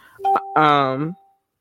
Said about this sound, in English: I'm sorry, y'all, my phone buzzing off